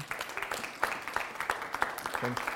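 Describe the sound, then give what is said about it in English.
A crowd applauds the worship team: a dense, steady patter of many hands clapping at once, with a brief voice rising out of the clapping near the end. “Please, can we just appreciate the worship team for this morning?”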